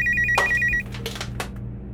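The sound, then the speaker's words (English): A telephone rings with a rapid, pulsing electronic trill for under a second, cut off by a sharp clack, followed by a few softer handling knocks over a low background hum. “I disconnect the phone from the wall.”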